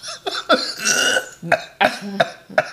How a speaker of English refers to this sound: You okay? I almost cough puked.